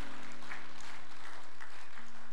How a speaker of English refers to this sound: So congratulations once again. Congregation, let's cheer for them one more time. All the people who made decisions for Jesus today.